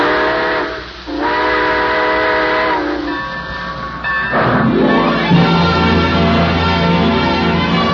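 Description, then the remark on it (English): A loud steam train whistle sounds in long sustained blasts, followed by the chuffing and rumble of a locomotive starting to pull away. “All aboard! Well, it looks as though we're ready to pull out”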